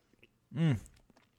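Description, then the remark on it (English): A single sip and swallow of Aberfeldy whisky, with a short voiced hum as it goes down, followed by faint mouth noises and quiet. “I'm going to take a sip of a drink here before I read this.”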